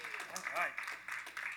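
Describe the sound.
Steady applause fills the short clip, a dense wash of many hands clapping, with a voice briefly rising over it partway through.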